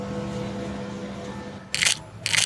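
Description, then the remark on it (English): Two crisp camera shutter clicks as a photo is taken at Big Ben in London, each a short bright burst about half a second apart, cutting over a low steady hum of background noise; no one speaks. “Let's take a photo to remember this moment.”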